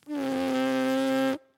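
A steady, buzzy tone from a horn player's vibrating lips without the horn, held at one pitch for just over a second, fairly loud with a rich stack of harmonics, then cut off abruptly.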